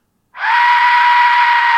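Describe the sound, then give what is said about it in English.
A piercing, scream-like death whistle starts abruptly and holds steady, loud and shrill with a breathy, rasping hiss layered over a sustained tone, with no voices. “That's how serious the death whistle is.”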